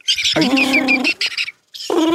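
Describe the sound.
A person's voice attempts a cricket imitation that comes out as a croaky, frog-like chirring, delivered loudly in two bursts separated by a brief pause.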